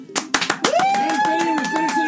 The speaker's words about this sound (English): Okay, get ready to clap. I'm doing my warm-up.